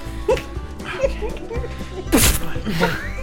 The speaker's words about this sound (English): Stop laughing at her sneeze. It looks painful. She's crying. She's crying from the pain.